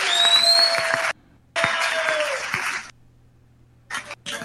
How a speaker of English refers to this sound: And I think that our one needs a round of applause, too. Thank you very much.